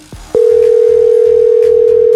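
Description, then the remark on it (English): On a phone call with nobody on the other line, a loud, steady telephone dial tone starts after a brief click and hums continuously at one pitch, unbroken, with a faint rhythmic pulsing beneath it. “Got a phone call today, but guess what? There's nobody on the other line.”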